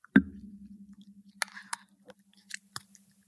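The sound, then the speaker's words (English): Someone eating rice pudding sprinkled with ground cloves from a bowl: one sharp clink leaves a low, steady ring, then a few soft, wet clicks and squishes follow as the spoon scoops. No one speaks. “Right, and this bowl is some rice pudding with sprinkled with ground cloves. Here we go. I don't know if you can hear this.”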